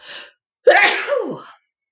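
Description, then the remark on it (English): A short breathy intake followed by a loud, abrupt sneeze, alone with no talking around it. “I think it's just a two sneezer.”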